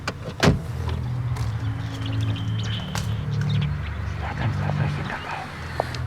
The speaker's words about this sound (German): Da kommt ein Auto. Das ist sie.